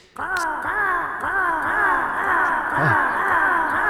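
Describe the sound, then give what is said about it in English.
A person imitates cawing crows as makeshift Foley for birds flying through a scene, repeating harsh, wavering caws in a steady rhythm for several seconds, fairly loud, with no other talk. “Get away from here, you dirty birds.”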